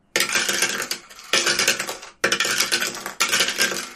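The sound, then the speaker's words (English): Dice rattle and clatter in four bright bursts of hard clicking, each lasting about a second with brief pauses between, fairly loud and with no voices. “Roll that crazy dice.”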